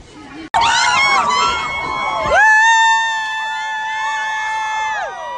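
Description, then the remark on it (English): A crowd cheers wildly as prizes are thrown into it, bursting in suddenly with a roar of high-pitched screams, whoops and shouts that stays loud and sustained for about five seconds. “Then the crowd goes crazy.”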